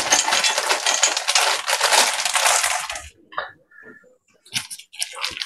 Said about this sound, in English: So when the bag fails you, then we can use a knife to punch a hole in the bag and make it wide enough, holding it over the bowl, that we can start pouring in the chocolate chips.